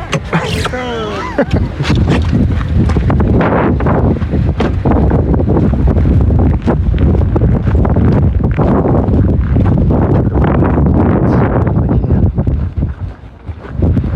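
Strong, freezing wind at about minus 10 degrees buffets the microphone outdoors in a steady, loud roar with heavy low rumbling and gusty thumps throughout, briefly easing near the end; a faint voice may be buried underneath.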